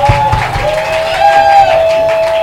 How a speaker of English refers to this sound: Praise the Lord. Are you excited? Yes. So you can do better by giving the Lord a shout and a clap.